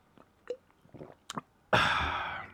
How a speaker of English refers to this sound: Just taking a little sip of the coffee there. Throat's still a little messed up.